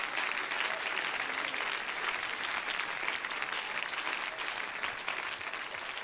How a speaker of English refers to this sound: If you believe that, would you clap your hands at Jesus right now?